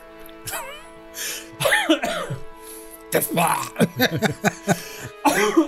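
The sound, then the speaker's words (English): A person coughs several times, short rough bursts with a bit of throat clearing and voiced sounds between them, fairly loud against a quiet background. “Sorry, I didn't mean to cough there.”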